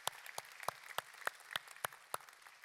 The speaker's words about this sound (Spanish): Así que damos gracias a Dios por esto que ha sucedido en nuestra iglesia, y definitivamente esto merece un aplauso.